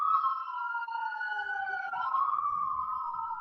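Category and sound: vehicle, emergency vehicle siren passing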